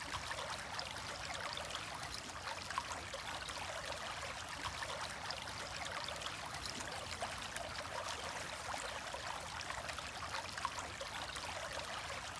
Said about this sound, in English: Feel how the river modifies its flow and increases and decreases its intensity, like your breath. Be still. The rhythm of the river changes. Feel the changes.